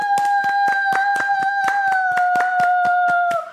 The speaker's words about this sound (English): So round of applause for us being adults. Woo!